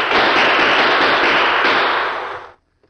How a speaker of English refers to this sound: Keep firing, Merkel. You too, Jake. I can hardly see him inside that stage. Just pour lead into it. One of the bullets is sure to hit him.